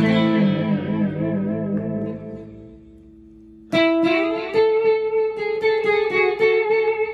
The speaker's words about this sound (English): But now, the electric guitar, which has a solid body, and it's silent until you plug it into an amplifier. But the amplifier has special effects in there, has echo, and it has